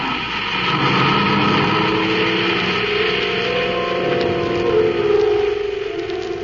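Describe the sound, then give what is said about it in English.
A surface car's engine hums steadily as it drives through a city to a spaceport, a continuous, fairly loud drone with a slight rise and fall in pitch and no one talking. “The reluctant Ropnar drives through the city to the spaceport.”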